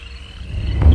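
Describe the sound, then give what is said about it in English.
A steady, high-pitched chirring of crickets fills the night air, layered over a low rumble that swells louder toward the end. “Left in the deafening chorus of crickets, the men had 3 hours to make up their own mind.”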